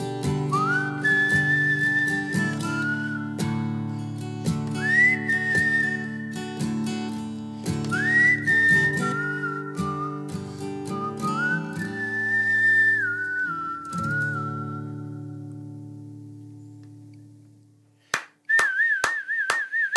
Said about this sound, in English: My whistling in celebration was not nearly on the level of your whistling in that song.